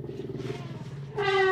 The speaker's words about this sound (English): a sound I love is elephant sound.